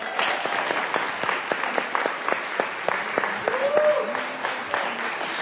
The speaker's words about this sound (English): And let's have another round of applause for Braille Institute.